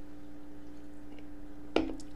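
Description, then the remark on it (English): A quick, wet sip of beer breaks a near-silent stretch, a single short slurp over a low steady hum, with no one speaking. “So pause for a sip of beer.”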